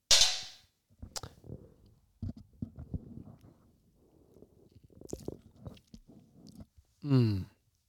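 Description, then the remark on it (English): Someone sips bourbon after a toast, with soft wet mouth clicks and swallows spread over several seconds, ending in a brief voiced exhale of satisfaction. A short sharp burst opens the sequence. “So we're going to, everybody, I encourage you to raise your glass and do a toast.”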